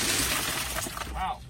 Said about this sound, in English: I'm just going to smash his window and walk away.